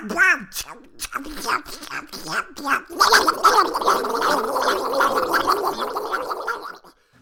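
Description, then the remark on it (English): Donald Duck's garbled, raspy cartoon duck voice quacks out a rapid string of unintelligible, speech-like phrases, buzzy and nasal, growing louder and more continuous in the second half. “He's also known for his very unique and famous voice that I don't even know how to describe. You just have to hear it for yourself.”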